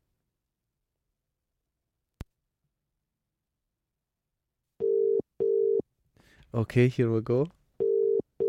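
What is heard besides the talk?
telephone dial tone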